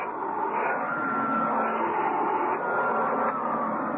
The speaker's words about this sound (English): Come on in. Just give me a minute to vacuum the cat lint off this carpet.